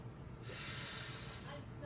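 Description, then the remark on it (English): An otter lets out a single sustained, breathy hiss lasting about a second, loud, with a faint snorting edge against a low background rumble. “It's actually an otter.”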